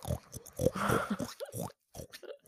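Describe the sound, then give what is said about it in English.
A person makes a few snorting, oinking grunts in imitation of a pig, fairly loud, mixed with brief vocal noises and short pauses. “I'm a pig.”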